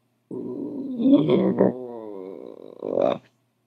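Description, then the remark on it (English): A voice imitates a small female dog's low growl at three skunks during an evening walk: one continuous rumbling snarl of about three seconds that wavers in pitch and swells to a rougher, louder burst at the end. “The little dog has seen them too. Out comes her low.”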